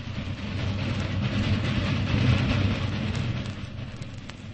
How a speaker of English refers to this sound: Go someplace where you won't hear the trains. I think they make you remember. The Midnight Express. It's a sad sound. A train in the night. Very sad. Very sad.